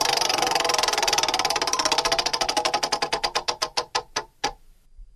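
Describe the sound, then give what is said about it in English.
A prize wheel spins with a rapid stream of loud, sharp clicks that gradually slow and spread apart as it winds down, ending in a few last isolated ticks. “Let's spin the wheel again.”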